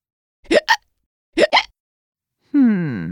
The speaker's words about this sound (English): So, what's that sound? Shout it out. A hiccup. That's right. It's a hiccup. We don't know why exactly people hiccup, but we do know which muscle makes it happen.